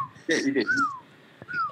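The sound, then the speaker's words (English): Two short whistled notes from a song's melody, each sliding downward in pitch, sound clearly, separated by a brief pause. A quick vocal burst comes just before the first whistle. “there's a part in the song where all he's doing is whistling.”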